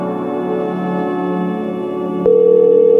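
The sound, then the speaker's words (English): After a low droning hum, a sharp click is followed by a loud, steady telephone ringback tone that begins abruptly near the end and holds without a break. No one speaks. “I'm gonna call the commander, Ted the Talking Head, and we'll see if he's available.”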